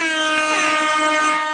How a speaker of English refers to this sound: Anyway, I just feel like dropping this air horn on you niggas.